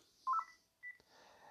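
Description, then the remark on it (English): Two short electronic keypad beeps from a phone as it is being shut off, one right after the other, clear, with a brief click between them and no voices. “I'm sorry, I got to shut these phones off.”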